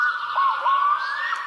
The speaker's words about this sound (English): This is the black-throated loon. I've definitely heard this before. These can make really cool calls. That is sweet, right? Neat looking bird, too. That sound is like really relaxing for some reason.